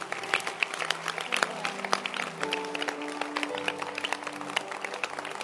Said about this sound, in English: Can you clap your hands for this book again?